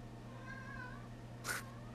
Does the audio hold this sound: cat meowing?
yes